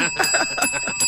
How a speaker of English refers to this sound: Ring the bell.